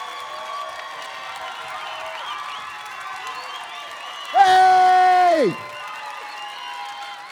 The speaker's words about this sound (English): And I believe there's somebody in this house that for the next 15 seconds ought to throw your hands in the air. You ought to shout. You ought to clap. You ought to praise God.